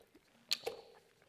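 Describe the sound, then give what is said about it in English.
A quiet sip of water: a brief wet slurp followed by a soft swallow-like click, low in level with no talking. “We're going to begin in verse 9 after I have a quick sip of water.”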